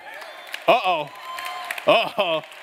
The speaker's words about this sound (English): Them claps got super quiet. Super quiet.